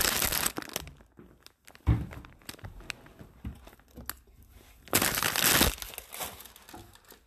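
A fire crackles in a hearth with irregular snaps and pops, swelling into louder, dense bursts of crackling now and then before settling back to sparse, quieter ticks. No one speaks.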